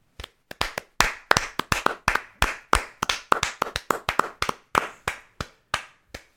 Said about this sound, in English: I think opening weekend, those numbers, you know what the Croods deserve? Applause.